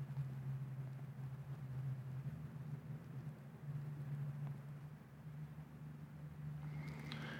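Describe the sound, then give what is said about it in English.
A logging truck engine miles away rumbles in a low, steady drone that swells and eases slightly, louder than the continuous hiss of a rushing creek about 50 feet away. The whole scene is fairly faint. “And the noise from that logging truck is even louder than the rush of the creek.”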